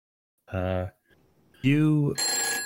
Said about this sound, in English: your phone rings.